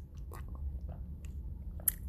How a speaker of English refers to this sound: Sorry about that. I'm having some water.